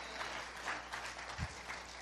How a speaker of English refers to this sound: Somebody clap your hands and give God some praise.